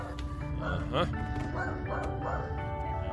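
A dog named Butch barks and yips several times in quick succession, short sharp calls spaced across a few seconds over a steady low background hum.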